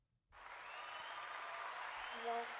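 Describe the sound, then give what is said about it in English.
A canned applause sound effect played from a soundboard cuts in abruptly after a brief silence. It holds as a steady, dense wash of clapping, with a faint tonal murmur rising briefly near the end. “Do the green one again because I couldn't hear it over the applause.”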